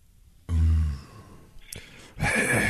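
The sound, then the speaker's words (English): Two loud, exaggerated breaths, a heavy huff followed after a short pause by another long, rasping breath, with no talking. “Heavy breathing.”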